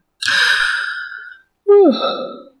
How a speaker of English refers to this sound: So, everyone, enjoy that yawn. I know you're probably yawning now, too.